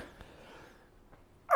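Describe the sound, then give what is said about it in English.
A single sudden sneeze bursts out loudly at the very end, cut short, after a stretch of near-silence with only faint low background rustle. “Bless you, ….”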